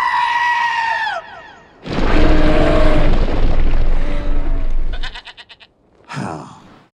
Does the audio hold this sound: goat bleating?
yes